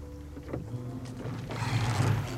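Oars splash and churn through water as a small boat is rowed back to shore, with a steady low rumble and periodic swishing strokes, fairly loud, no voices.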